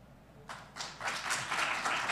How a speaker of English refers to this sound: Let's give them a big, huge round of applause. Candidate Aragon, Candidate Keller, Candidate Gonzalez. We thank you all for being here in our studio audience.